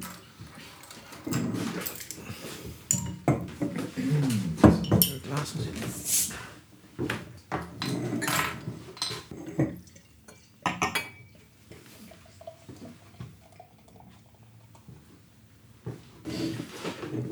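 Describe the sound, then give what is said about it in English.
A bottle of Rokop beer is opened with glassy clinks and clatter, then poured into a glass for tasting with a steady gurgling trickle, while muffled voices murmur in the background. “Which I think we should pour now and taste, and you can tell me a little bit about that beer.”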